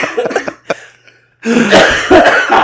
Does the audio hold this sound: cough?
yes